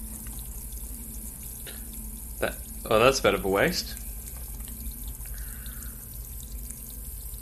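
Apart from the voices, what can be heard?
liquid pouring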